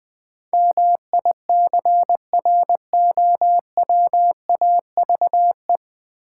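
Morse code sent at a brisk 20 words per minute: a single steady mid-pitched tone keyed on and off in quick dots and longer dashes, with short gaps between characters and no voices.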